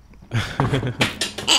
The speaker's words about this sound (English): Where's that pig? Huh? Good answer, pig. You got the good answer, pig, for me?